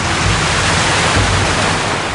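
A car drives through a river, throwing up a steady, loud rush of splashing that roars continuously for the whole moment, with no voices over it.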